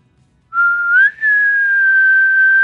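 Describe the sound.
A person imitates a faraway elk bugle with a single high whistled tone that climbs, breaks briefly, then holds a long, steady, slightly falling note. It is loud and clear, with no talking.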